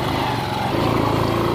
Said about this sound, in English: I took a 30 minutes dusty and bumpy ride on motorcycle taxi known as Boda Boda to get to Bidibidi refugee camp.